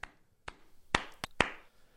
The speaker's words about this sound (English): I don't think our co-hosts really appreciate how good this clapping stinger is.